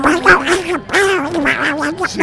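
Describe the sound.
A person imitates Donald Duck's raspy, garbled cartoon voice in a continuous run of quacking, nasal babble, loud, with brief pauses between bursts.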